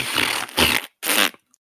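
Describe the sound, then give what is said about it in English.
Three loud, raspy fart noises in quick succession, each a short sputtering burst with a brief pause between the second and third, then silence. “You could just replace this whole one with a big long fart noise.”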